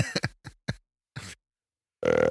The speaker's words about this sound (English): That was a good, well-timed burps. Dual burp.